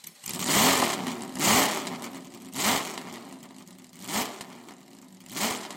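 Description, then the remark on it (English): A Ferrari 156 Sharknose racing car engine revs hard five times in a steady rhythm, each blip of the throttle climbing and falling away, with no one talking. “First of all, that beautiful Ferrari Sharknose 156.”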